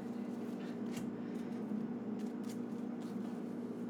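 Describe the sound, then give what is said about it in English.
Quick papery riffles and taps from a deck of cards, the player's library, being shuffled during a card game, short bursts recurring irregularly over a steady low background hum, soft, with no one talking. “Instead, search your library for up to 3 land cards, reveal those, and put them into your hand, and shuffle your library.”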